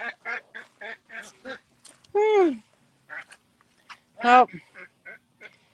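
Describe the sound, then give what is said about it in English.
Chickens squawking while mating, a rooster among them: a quick run of short clucking calls broken by two loud, drawn-out squawks that rise and then fall away, with brief pauses between the bursts. “Chicken porn. Great. Oh, are they doing it?”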